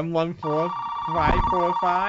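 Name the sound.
telephone ringing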